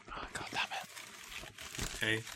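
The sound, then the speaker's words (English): Crackly rustling and crinkling of paper being handled and crumpled, a steady scatter of dry crunches over a couple of seconds, ending with a brief tonal voice-like sound. “Oh, I do have paper.”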